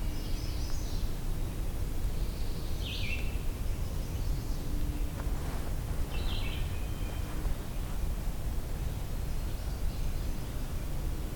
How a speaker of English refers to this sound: There was a distant indigo bunting.